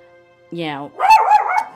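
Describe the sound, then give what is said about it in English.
A dog lets out a short whiny yelp, then a quick cluster of loud barks, with faint background hum underneath. “Sorry, my dog likes to get involved.”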